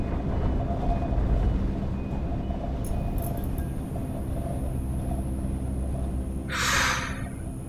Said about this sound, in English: And then you hear another rolling of thunder, another crash of lightning, and the light flickers back on.